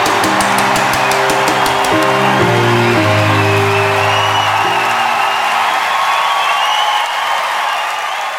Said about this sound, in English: When we have a guest speaker, we get up and we with a big applause, we announce the speakers on the stage. Come on church, let's stand up and a tremendous, crazy, international, vibrant applause.